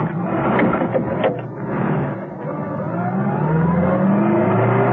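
A car is started up and driven as quickly as possible down a driveway: the engine revs and accelerates hard, its pitch climbing steadily as it speeds off. The motor stays loud throughout, with no voices.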